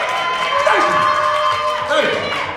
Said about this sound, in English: But please, please, please give yourselves one more round of applause for joining us for This, That, and the Third, for since Third Thursday. Nah, for real, for the cameras and shit. Can y'all give a round of applause? Like, y'all want to be here.